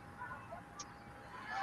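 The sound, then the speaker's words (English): Several short car horn honks from cars driving by in support of students walking out over mask mandates in Denver, over a steady wash of traffic noise, fairly faint, with the honking growing a little louder toward the end. “There are, you see cars in the video driving by honking in support in that video, I believe.”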